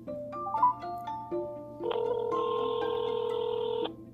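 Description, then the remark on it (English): A phone ringing on an outgoing call: short electronic dialing beeps, then a steady, sustained ringback tone held for about two seconds, clear with no voices. “So you'll hear the phone ringing.”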